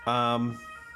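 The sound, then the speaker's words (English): A brief, loud blare from the siren of an ambulance that appears stuck outside a door. A single steady tone lasts about half a second before cutting off, leaving a faint fading tail. “Got an ambulance outside my door.”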